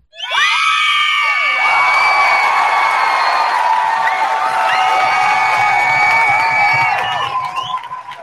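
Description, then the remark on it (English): A crowd cheers loudly and steadily for about eight seconds, played as a sound effect, with high-pitched shouts, whoops and screams layered over a dense roar before it starts to fade at the end. “Oh, glad to have the sound effects back.”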